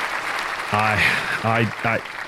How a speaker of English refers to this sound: So I'm pretty thrilled with that and going to give myself a round of applause.